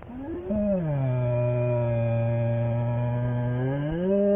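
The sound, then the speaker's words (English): A frightened black bear lets out one long, low moan of fear that swells at the start and then holds a steady, droning, harmonic pitch for about four seconds. No voices are heard. “This haunting sound is being made by a black bear.”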